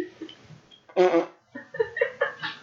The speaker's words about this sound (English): Been farting a lot. That's what. All day.